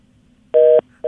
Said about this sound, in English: We're having a little phone trouble, folks. It's all right. We're not picking on any particular callers. All of our callers are suffering from this.